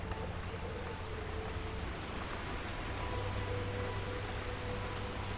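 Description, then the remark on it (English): A steady, continuous wash of flowing water from a stream in an unkempt, unmanaged woodland in Britain, just down the field from a farm, a soft even hiss with a low rumble underneath, holding the same level throughout with no voices. “I'm sitting by a stream. You can hear it.”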